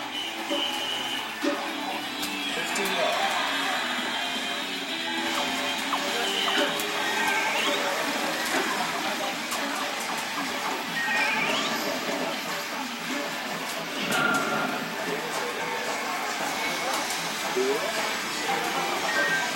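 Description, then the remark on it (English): A dense, busy wash of electronic video arcade game sounds at Akihabara train station in Tokyo, Japan, with chirps, sweeping tones and clattering noise layered continuously at steady loudness, along with a murmur of crowd voices. “… caught the action at a video arcade at Tokyo's Akihabara train station.”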